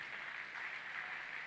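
An audience claps steadily throughout, a dense, even wash of many hands with no individual claps standing out and no voices heard over it.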